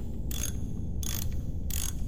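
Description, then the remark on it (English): Three short, harsh metallic bursts of tool noise, like a ratchet being worked, come at roughly even intervals over a steady low mechanical rumble as someone works on a car. No one speaks. “I believe he's working on the car at the moment.”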